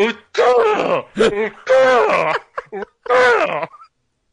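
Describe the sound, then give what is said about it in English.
Several people make strained, groaning vocal imitations of a velociraptor's resonating-chamber call in quick bursts, rising and wavering, fairly loud, with no actual words spoken. “Everybody's doing impression of the Raptor resonating chamber here.”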